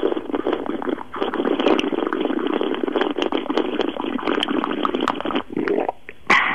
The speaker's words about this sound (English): Oh, come on, that was 9 seconds of pure slurping action. Do you know what? I'm going to be a real cynic here, but it sounded like she was blowing into a straw.